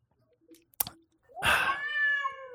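A sharp click, then a female cat that is going wild lets out one long, loud, drawn-out yowling meow, holding its strained pitch for about a second before trailing off.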